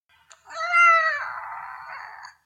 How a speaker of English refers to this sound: That's her I really want food meow.